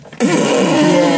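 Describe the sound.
A voice imitates a fart with a sudden, loud, sustained buzzing blow that starts abruptly after a brief quiet moment and rattles on steadily for about a second.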